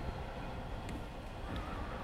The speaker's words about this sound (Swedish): Det är i mitten av april och jag tar tåget upp.